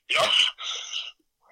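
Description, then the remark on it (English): A single forceful sneeze, a sharp breathy burst followed by a softer hissing exhale, then a moment of quiet before another breathy sound begins. “Bless you.”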